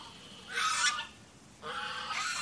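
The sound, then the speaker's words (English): A gaggle of geese at the rim of a lake honk in two loud, raspy bursts, one short and one longer, over a faint hiss of background noise, with no voices present. “A gaggle of geese at the rim of a lake, honking and fluttering.”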